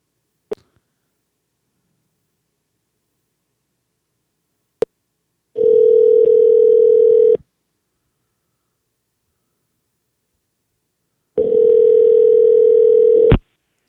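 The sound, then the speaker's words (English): An outgoing phone call's ringback tone: two steady, buzzing tones of about two seconds each, separated by a long silence, preceded by a couple of sharp line clicks. No one speaks. “Let's see if he answers the phone.”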